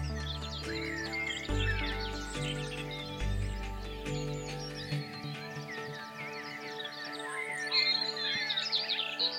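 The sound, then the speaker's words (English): A dense chorus of many birds chirping and singing at once, overlapping calls near and far, with a low sustained humming tone underneath for the first half. “It's only when you hear them all singing at once that you realise it. There are birds close to you and birds a bit further away.”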